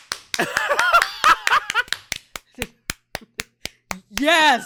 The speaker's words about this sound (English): And that deserves a soul clap.